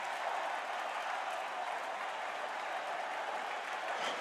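A large basketball crowd cheers and applauds as Sexton and Alvarado are tied up over a loose ball, in a steady, dense roar of clapping and shouting that holds at a constant loud level for several seconds without a break.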